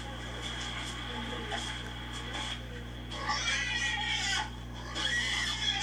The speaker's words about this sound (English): Kick the fucking pig.